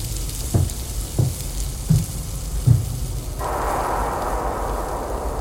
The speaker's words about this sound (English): As I come to my senses, I also hear the sound of frying coming from the kitchen